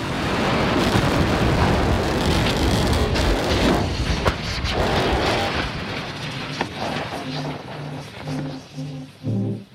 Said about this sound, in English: And the company started conducting even bigger test launches of that rocket. Stage prop is go for flight. The Starship. T-minus 10, 4, 3, 2, 1, 0. We have liftoff. And some of these launches ended in explosions.